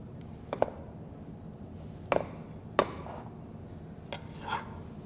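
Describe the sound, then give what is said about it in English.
A knife slices through a fresh avocado for a simple dressing, with a handful of soft, irregular cutting taps against a board over a steady low hum and no talking. “take our fresh avocado, and I like to cut it at the very last second so it doesn't change color.”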